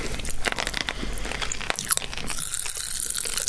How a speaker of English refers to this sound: Oh, that was a big, big bang. Now, it's probably not much in a small handful of them. But what do you notice about the residue of the Pop Rocks as you chew them?